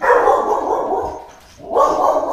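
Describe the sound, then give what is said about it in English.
A dog named Milo barks loudly in a rapid, continuous burst, briefly dropping off partway through before starting up again with the same intensity. “Top dog security.”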